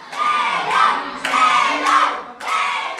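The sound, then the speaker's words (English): First and second graders at the Cloud Forest School in Monteverde, Costa Rica, cheer loudly while watching Costa Rica play Spain in a World Cup soccer match, their high-pitched shouts and yells surging in three rising waves with no speech. “fans are tuning in to cheer on their country's team”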